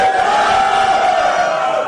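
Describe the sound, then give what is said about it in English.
A crowd of many voices shouts together in a loud, sustained roar of amen, the mass of voices blending into a steady, dense wall of sound for about two seconds. “I can feel somebody's not shouting the amen better.”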